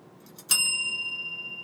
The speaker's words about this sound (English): I've got my bell ready to go.